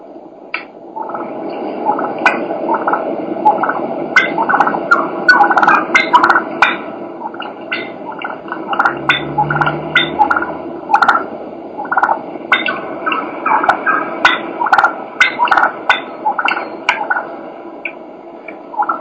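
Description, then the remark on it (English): A wild turkey hen clucks and purrs steadily as she comes in to decoys, quick sharp clucks repeating over a soft rolling purr for the whole stretch, with faint outdoor background hiss. “This is a hen just clucking and purring.”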